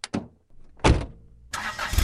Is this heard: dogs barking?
no